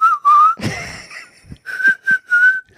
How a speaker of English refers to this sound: I have terrible whistling skills.